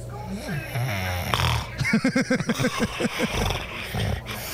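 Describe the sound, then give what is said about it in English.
A person snoring loudly, with deep rumbling breaths that break into a rapid, fluttering series of rasping pulses midway before settling back into a steady drone, with a long pause in breathing. “we have audio of you snoring, and I totally get it.”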